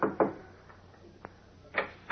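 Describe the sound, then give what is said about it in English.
Clark Kent knocks several dull knocks on the wooden door of a ground-floor apartment in a tenement hideout, spaced unevenly with pauses between the raps and a faint hum underneath; no one speaks. “Resuming his guise of Clark Kent, he knocks at the door of the ground floor apartment.”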